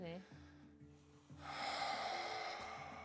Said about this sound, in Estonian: Et su kõht hingad sisse, aga sa hingad rinnaga ka, mõlemad, eks? Ja hingad nii. Välja.